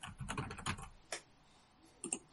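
Fast typing on a computer keyboard: a dense flurry of clicking keystrokes, then a few scattered taps after a pause. Fairly quiet, with no voices.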